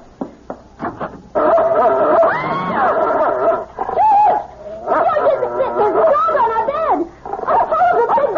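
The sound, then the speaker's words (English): A dog gives a few short, sharp yelps, then breaks into long, wavering whines and whimpers that rise and fall, fairly loud, continuing almost without pause. “It's only a dog for Pete's sake.”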